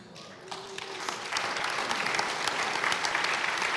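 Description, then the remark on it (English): A church audience breaks into applause for news that Wednesday-night children's attendance is up over 65%, many hands clapping in a dense, steady patter that swells after the first second and holds strong to the end. “Yes, you can clap for that one too.”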